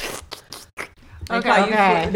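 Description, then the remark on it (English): A voice imitates loud slurping of a drink with four or five short, wet, hissy sucking bursts, followed by a longer drawn-out vocal sound. “I'll just be like, the slurp. The slurp.”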